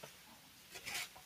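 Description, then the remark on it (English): White tissue paper wrapping a gift mug crinkles and rustles as it is opened, in a few short, soft bursts, swelling briefly near the end before fading. Nobody speaks. “It's in white tissue paper here.”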